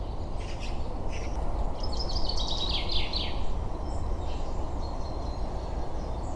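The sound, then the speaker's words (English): Chaffinches giving short sharp 'pink' contact calls, then a quick descending chaffinch song phrase, in the morning, over a steady rushing outdoor background of wind. “The kind of pink pink kind of noise there is chaffinches doing their contact call, but there's also a bit of chaffinch song this morning, and they're definitely one of the early ones to sing.”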